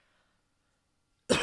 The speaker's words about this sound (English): Coughing.